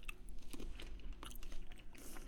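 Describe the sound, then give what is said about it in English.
Crisp crunching and chewing, a run of short cracking bites at an uneven pace as someone eats frozen corn kernels one at a time, with no talking. “Try them one at a time. Okay, and just chew them?”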